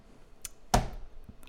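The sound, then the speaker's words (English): A single heavy thump of a fist slamming on a table, sharp and solid with a brief ringing decay, framed by a couple of faint knocks and no talking. “You can't slam his fucking fist on the goddamn table all the damn time.”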